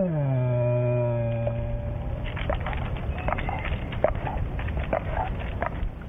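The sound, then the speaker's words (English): A frightened black bear sitting up in a tree gives a low, sustained moan of fear for about two seconds, then falls quiet amid irregular crackling and snapping sounds, like shifting branches. No one speaks. “But it's just their moan of fear.”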